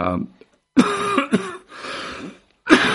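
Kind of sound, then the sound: human body sound, coughing into the microphone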